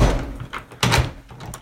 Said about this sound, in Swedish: Dörren är helt förstörd så det går inte knappt att öppna det. Liksom.